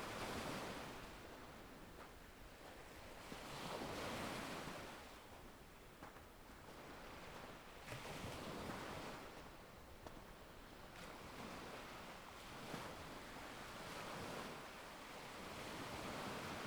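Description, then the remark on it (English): Ocean waves wash and break against the shore in a steady, rolling rhythm, each surge swelling into broad hissing surf before easing back. No voices, only the continuous roar of the sea. “You can hear the sound of the waves crashing onto the shore.”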